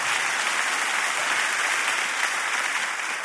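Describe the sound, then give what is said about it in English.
An audience claps together in a dense, steady wash of applause that holds at an even loudness for about three seconds, with no voices breaking through. “Come on, clap like that blessed you, even though I know it stepped on your toes a little bit.”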